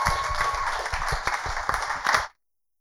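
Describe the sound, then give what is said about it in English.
A crowd applauds the day's invited speaker steadily, a dense wash of overlapping claps with a few sharper individual hits standing out, holding loud for about two seconds before cutting off abruptly into silence. “Please let's give him a round of applause.”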